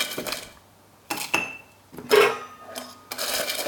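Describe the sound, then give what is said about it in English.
An ice crusher crushes ice for a drink, grinding and rattling in several loud, uneven bursts, a crunchy clatter with bright clinks of ice, separated by short pauses. No one speaks. “My ice crusher is not great.”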